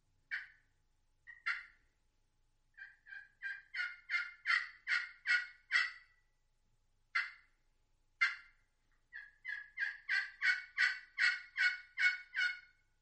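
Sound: wild turkey calls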